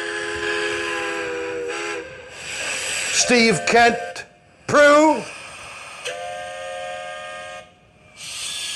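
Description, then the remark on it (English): The whistle of a train approaching from a distance sounds in several long, steady blasts, fairly loud and rich in tone, with brief bursts of people talking between the blasts. “I saw the train coming from a distance. There's a train heading your way.”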